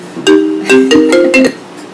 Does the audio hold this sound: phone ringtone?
yes